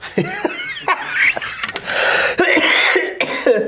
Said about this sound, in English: There's that cough of mine.